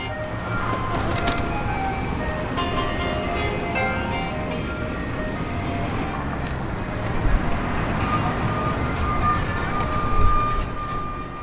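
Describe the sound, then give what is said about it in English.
A busy city street on 18th Street in Pilsen, on the southwest side of Chicago, with a steady wash of traffic and vehicles passing, while an ice cream truck searching out customers plays a tinny jingle over the noise and faint voices drift in the background. “On 18th Street in Pilsen, on the southwest side of Chicago, the ice cream truck searches out new customers.”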